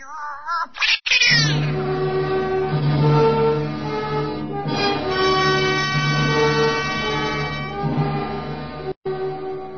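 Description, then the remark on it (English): A pet cat yowls loudly after being kicked by a man: a drawn-out, wavering wail that rises and sags in pitch for several seconds before cutting off abruptly. No one speaks. “That was no excuse for a great big man to kick a harmless little pet.”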